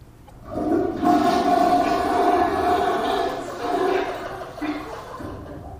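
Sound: toilet flushing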